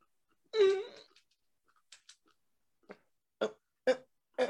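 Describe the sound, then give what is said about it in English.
A pet cat named Maeve gives one clear, drawn-out meow with a bright, slightly falling tone, followed by a string of short, softer chirping sounds spaced irregularly after it. No talking. “Oh, you got a cat. Hi, cat.”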